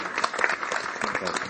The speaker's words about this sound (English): And thank you all for coming out this morning. And let's give them a sort of nice round of applause for sharing their thoughts this morning.